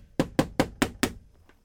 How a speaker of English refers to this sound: And so the rabbi, he went down there. And he arrives and he knocks on the door.